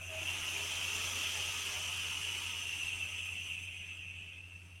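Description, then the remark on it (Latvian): A steady sizzling hiss from an e-cigarette coil firing at 80 watts while vaping from a tank, continuing unbroken for several seconds before easing slightly at the end, with a faint low hum underneath and no talking. “Jā, man apmēram puses vajag iztvaicēt no šitā tanka. Ok, bliežam augšā uz 80 vatiem atpakaļ, jā?”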